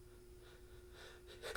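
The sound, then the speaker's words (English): A few sharp inhaled breaths build up, then a single loud sneeze bursts out at the very end, with no talking, from a man battling a head cold. “Achoo. Sorry. He's battling a cold.”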